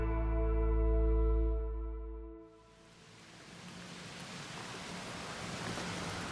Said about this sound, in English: She's pulled it into the high weeds lining the river. The overhanging trees offer a bit of protection from the rain, but not much.